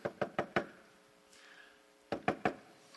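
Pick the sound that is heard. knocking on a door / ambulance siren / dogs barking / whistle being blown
knocking on a door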